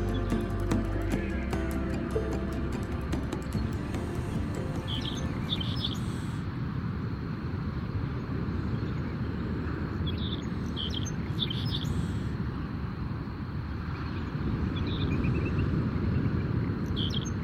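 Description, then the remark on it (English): Resident and migratory birds chirp and sing in short, bright bursts every few seconds over a constant, heavy wash of waves crashing on the coast, beside miles of salt marsh on a humid, salty morning just after sunrise. No voices are heard. “we'll listen to resident and migratory birds sing to the rhythm of the crashing waves”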